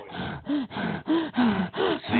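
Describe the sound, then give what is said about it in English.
A person fakes heavy breathing, panting in about six quick, loud, rhythmic gasps with voiced grunting edges, with no talking. “It's actually, well, that's not real breathing heavy.”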